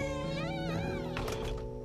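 A door onto a deck swings open with a drawn-out, wavering squeak over a steady low hum, then a brief burst of soft rattling and clicking as it settles, on a Friday morning as the sun comes up in central Iowa. No one speaks.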